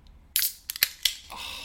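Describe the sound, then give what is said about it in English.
Drink cans are cracked open: a sharp metallic snap and pop, followed by several quick hissing bursts and a fizzing hiss that trails off. No voices are heard. “Let's crack them open. Let's have a celebratory first sip.”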